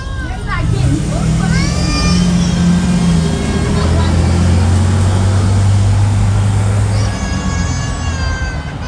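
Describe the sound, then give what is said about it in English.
Cars pass by at night with a steady low engine drone throughout, while high-pitched squealing calls rise over the traffic at the start and again near the end, amid faint background voices. “like I said, you know, the cars kind of like ruined that, but you did get like the ass end of what was happening.”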